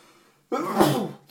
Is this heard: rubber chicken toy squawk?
no